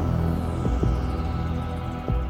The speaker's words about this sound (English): Heartbeat.